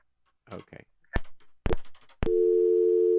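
A few clicks and brief handling noises give way to a steady, loud telephone line tone from a call-in phone system that holds unbroken through the final second, with faint voice-like sounds before it.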